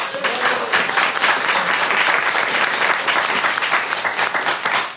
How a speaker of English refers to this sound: Please, a round of applause for our moderator,